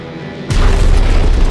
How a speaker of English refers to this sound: Just then, the first of their bombs went off.